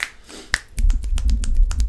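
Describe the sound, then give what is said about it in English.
Finger snapping in place of applause at a poetry slam, starting with a single sharp snap, then a quick run of many overlapping snaps from several people, loud and steady, with no talking. “That's how they clap, isn't it? Poetry slam.”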